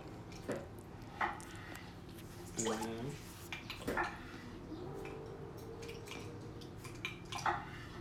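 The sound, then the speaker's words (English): Two tablespoons of warm water are poured and splash into a mixing bowl in a few brief bursts, with light clinks and drips over a steady low background hum. “And then we need 2 tablespoons of our warm water to go in.”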